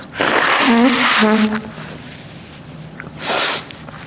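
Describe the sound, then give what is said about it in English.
A loud, voiced sneeze bursts out, followed a couple of seconds later by a shorter, breathy sneeze or cough, in New York during a season of heavy pollen and allergies. “For those who are listening online and wondering why they're sneezing and coughing in New York, there's terrible pollen here, terrible allergies, and just that time of year.”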